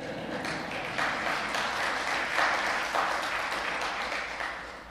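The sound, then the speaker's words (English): A church audience applauds a four-week-old baby during a sermon, steadily for about five seconds, a dense wash of many hands clapping at an even, moderate level that tapers slightly toward the end. “You can applaud.”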